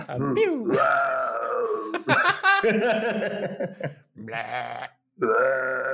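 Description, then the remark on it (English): A person imitates thunder with their voice: a string of loud, growling groans and grunts with sliding pitch, broken into several bursts, with a short pause before the last rumble. “I'm thunder.”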